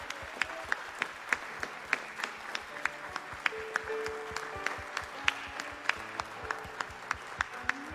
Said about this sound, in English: If God's been good to you this morning, give him a good hand clap of praise and worship.